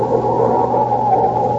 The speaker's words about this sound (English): Blow your horn. Blow your horn.